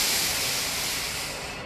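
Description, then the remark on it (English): A steady, airy hiss of breath drawn in through the nose during a breathing meditation, fairly loud and lasting under two seconds before tapering off at the end, with no talking. “breathe it out through your nose, not through your mouth”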